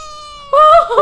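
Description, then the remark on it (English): A male pet cat that has just come in meows, starting as a thin, steady held tone and then swelling into a louder, wavering mew. No one talks over it. “Our pod cat just came in. Oh, look at this cat.”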